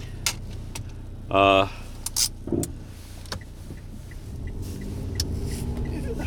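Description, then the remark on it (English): Inside a tiny car on a beautiful day, while knobs are turned down: scattered clicks and handling noises, a brief buzzy electronic tone, then a steady low rumble building quietly underneath. “I'm still in my tiny car.”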